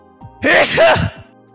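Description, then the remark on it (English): A loud sneeze: one sharp, breathy burst with a voiced cry in it, lasting under a second against a quiet background. “I always sneeze in twos.”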